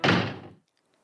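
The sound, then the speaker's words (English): A single heavy door is slammed shut by a doorman, a loud full-bodied bang that rumbles briefly before dying away into silence. “But a doorman saw me and pushed me away and slammed the door shut.”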